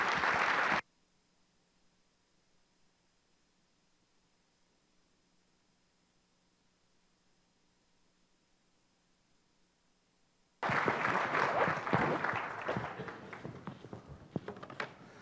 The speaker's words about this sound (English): And so could I ask all of you with your applause to please welcome Foreign Minister Steinmeier.